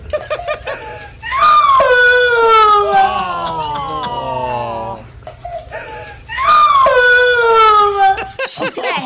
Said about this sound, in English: Here's the little girl crying about the elf on a shelf that the dog ate. When the kids realized that our dog ate the elf whole after he made flower angels.